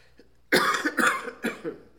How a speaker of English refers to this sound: Excuse me. As you can hear, I've had this junky cough for weeks.